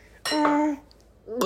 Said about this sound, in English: I'm Jennifer Coolidge, and I'm going to do a clink real fast. Ready? Okay.